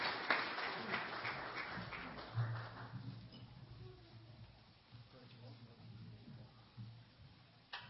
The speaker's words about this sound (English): Let's give the Lord another hand clap of praise. Let's hear it.